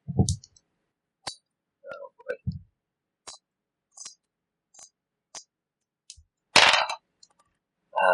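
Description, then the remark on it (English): Dice clatter across a hard tabletop in a scattered series of sharp clicks and knocks, ending with a louder rattling tumble; a few brief low murmurs sit between the hits. The dice are rolled for an opposed agility check in a tabletop game. “You want to add anything or just the dice?”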